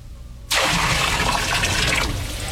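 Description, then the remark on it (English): A heavy rush of water poured from a barrel over a bullock and wood on an altar bursts in abruptly after a short pause and splashes steadily and loudly for about two seconds before starting to taper off. “I have had water brought forth in barrels, which shall now be poured over the bullock and the wood.”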